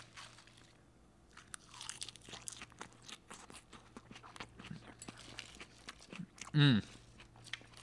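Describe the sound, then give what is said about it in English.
Crisp, crunchy chewing of a salad of beans, tomatoes, mushrooms, pepperoncini, cucumber, onion, red bell pepper and basil with balsamic vinaigrette over an Italian blend, with rapid irregular crunches throughout and one louder burst of crunching near the end, with no talking. “Let me mix it up, and then we'll get started. I'm very hungry today.”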